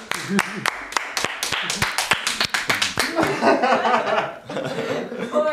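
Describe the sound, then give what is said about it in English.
A short burst of applause, sharp uneven claps for about three seconds, then the clapping thins out into chattering voices and laughter. “Round of applause, guys.”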